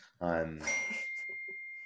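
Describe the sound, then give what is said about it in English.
A bright electronic notification chime rings out, a short rich tone followed by a single clear note that lingers and slowly fades, with a couple of soft blips underneath. “And sorry, I'm just getting tons of notifications whilst I'm doing that. There's loads of bleeps and bloops going on in the background, so I apologise.”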